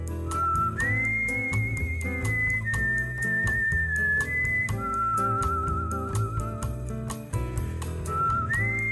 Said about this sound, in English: He took me for a drive along the Pacific Coast Highway. And I remember on that journey, I whistled the theme from Black Orpheus, where Orpheus sings up the sun in the morning.